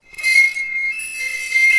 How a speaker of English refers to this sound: Shrieked the high sound of steel hot on steel.